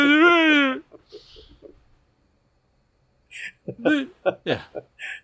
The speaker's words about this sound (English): Okay, everybody, you can turn your volume back up on the podcast now. He's done screaming in the microphone.